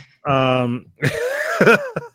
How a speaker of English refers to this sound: That was a burp. That sounded like you shit your pants and you burped.